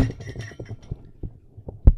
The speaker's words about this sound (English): Jeez, she's swinging her arm around. Whole area. She knocks down her cocktail. No, that would be my microphone, but I would never. She knocks down her microphone.